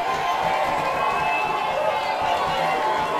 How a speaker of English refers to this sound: Let's have a cheer too for Michael Redd, who played before that.